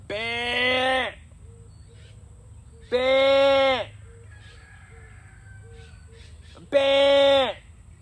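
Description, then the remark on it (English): A person's voice imitates a goat's bleat three times as a call that brings goats running across a field, each call a loud, wavering, nasal bleat about a second long, separated by pauses of a couple of seconds. “I can do that call, and the goats just come running across the field.”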